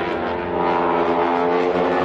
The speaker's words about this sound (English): A little bit of airplane noise.